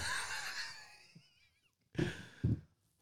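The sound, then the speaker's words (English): A toilet flush sound effect played to introduce a Bathroom Chronicles segment: a broad rushing, gurgling swirl of water with whistling tones that gradually fades, followed by two short bursts of noise, with no talking. “That's a long flush.”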